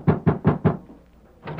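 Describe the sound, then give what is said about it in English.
Four firm, evenly spaced knocks on a wooden door, fairly loud, followed by a short pause and the start of a fifth. “That's them. Answer the door.”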